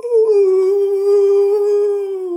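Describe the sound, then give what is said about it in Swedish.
A voice imitates the whooping call of hyenas heard around a tent camp on the savanna, one sustained, loud, hooting tone that holds steady for a couple of seconds and sags slightly in pitch at the end, alone. “Så låter hyenerna, vet du, som är.”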